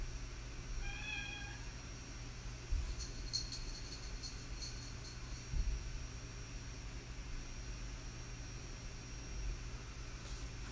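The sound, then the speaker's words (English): A single short meow from a pet cat named Sage near the start, fairly quiet, over a steady low hum and background noise, followed by a few faint clicks and knocks. “There's a noise in the background.”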